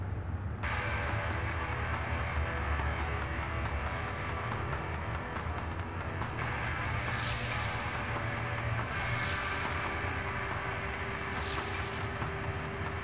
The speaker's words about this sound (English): Please be mindful of the broken glass.